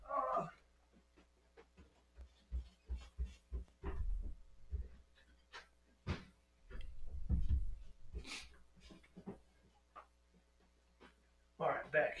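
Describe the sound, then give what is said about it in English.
A back door is unlocked and opened: a series of sharp clicks and light rattles, then heavier thuds and a sweep of movement, with faint breathing or panting. “I have to unlock my back door real fast.”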